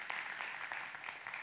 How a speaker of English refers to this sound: yeah, that's right. We should applaud.